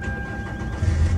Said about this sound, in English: a 1999 Toyota Camry, aka Snow White McQueen. With the power of 3 horses and 1 miraculous, amazing Himar, this beast does 0 to 100 in 13.9 seconds. Now let's take you inside and make you hear that engine roar.